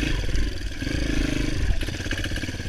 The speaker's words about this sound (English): Where trail bikes, they have a heavier flywheel, so they rev up slower, so it doesn't feel as fast, but they don't stall as easily because they rev back down slower. And this extra weight keeps the engine chugging.